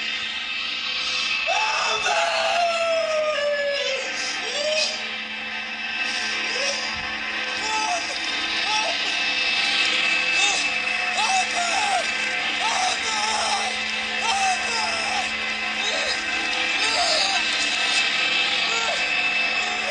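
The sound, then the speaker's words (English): A man yells for help in a film scene, in repeated short, strained cries over a loud, dense wash of noise that persists through the whole stretch, with one longer falling shout near the start. “Help me, he's yelling.”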